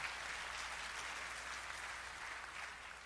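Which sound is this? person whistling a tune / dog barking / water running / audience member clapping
audience member clapping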